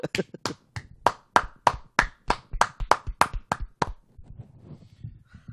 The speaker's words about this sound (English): Whenever we give ourselves a round of applause on the show, it's just so sad.